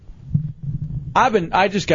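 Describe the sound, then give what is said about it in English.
A low, rumbling fart that flutters for about a second, then gives way to loud voices, from someone who ate a lot of broccoli about an hour earlier. “They usually don't smell as bad as they sound, though.”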